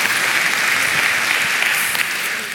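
A crowd claps steadily, a dense wash of many hands with a few sharper claps standing out, holding at an even loudness before easing off slightly at the end.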